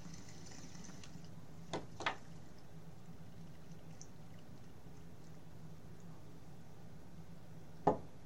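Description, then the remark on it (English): Water pours steadily and quietly, a soft continuous trickle broken by a few brief clinks or knocks; no one speaks. “Here's water.”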